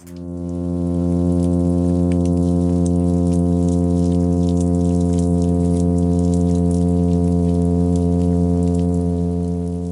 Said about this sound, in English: This is the sound of a midshipman fish during a summer's evening, broadcasting his advertisement call from his nest in the intertidal zone.